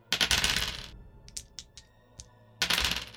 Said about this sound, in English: So, either way, yes, I'm rolling the wrong dice.